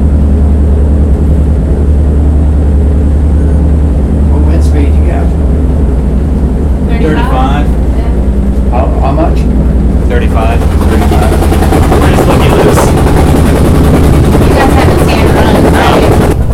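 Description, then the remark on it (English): A hot-rodded swamp boat engine roars loudly and continuously at 1,000 RPM, a deep droning rumble that swells into a harsher, louder roar partway through, with faint voices briefly audible beneath it. “It's 1,000 RPMs. We've been graced with a visit by …, founder of Missouri Wind. That was him with me. Commentary on the loudness of Swamp Boat.”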